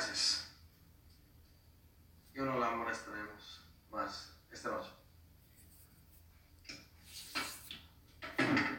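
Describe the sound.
Someone lights a cigarette with a lighter at a door: soft rustling and breathy puffs, then a couple of sharp lighter flicks near the end, with faint mumbling voice in between.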